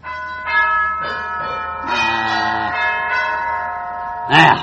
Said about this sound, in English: That rips it. I'm going to rip that whack-wacky gong box off of the wall.